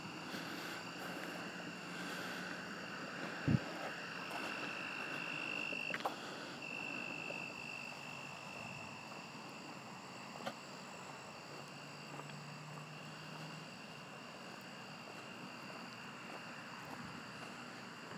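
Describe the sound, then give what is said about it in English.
A suburban neighborhood night ambience in Central Texas, recorded while walking, with a steady, droning chorus of frogs trilling continuously, layered over a low rumble, with a couple of brief soft thumps. “The sounds of Central Texas suburban neighborhood.”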